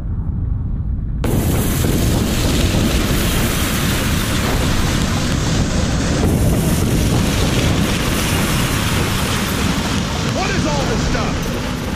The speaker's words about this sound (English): But clip one, they talk about the volcanic eruption and scientists using a simulator to replicate it. Using Willetz's model, we have reconstructed the Krakatoa 535 AD Big Bang.